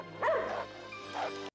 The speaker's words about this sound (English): They can sense it. They can hear the dog bark.